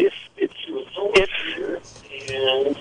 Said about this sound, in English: do you have the radio on in the background? I'm hearing an echo of you.